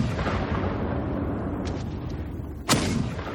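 A continuous heavy rumble of an artillery barrage at 3:05 a.m. at dawn, shells and bombs booming in explosions that roll together, a softer burst midway and a sharp, loud blast cracking through near the end.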